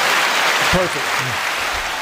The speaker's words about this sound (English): y'all give her a big round of applause